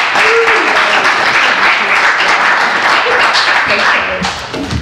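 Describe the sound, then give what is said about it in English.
Steady, loud applause from an audience welcoming the evening's speaker at a Bible teaching gathering, a dense wash of many hands clapping at once that holds evenly for several seconds before easing slightly at the end. “I actually, no cheering tonight, just clapping.”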